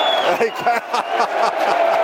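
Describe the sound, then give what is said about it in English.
A West Ham football crowd at the Den applauding a ball boy, a dense, steady wash of clapping blended with a murmur of many voices and a few shouts, holding fairly loud for about two seconds. “The West Ham applaud him in that little...”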